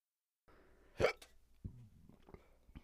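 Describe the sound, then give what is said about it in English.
One sharp, loud hiccup, followed by a few softer, brief clicks and breathy sounds in an otherwise quiet moment. “Sorry, that was not on purpose. I had a hiccup.”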